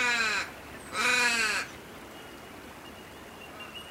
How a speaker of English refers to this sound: And the crows crawling in the trees. Rawr, rawr.